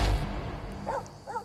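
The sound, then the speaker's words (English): A dog in a movie gives two short, high barks about half a second apart, fairly faint against a low background rumble, with no one talking. “That dog is a good actor.”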